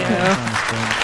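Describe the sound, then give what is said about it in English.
A short burst of canned applause played from a sound-effects button, a steady crackle of clapping that fills the brief moment, with a person's voice talking underneath it. “Yeah, a little quicker with the applause button”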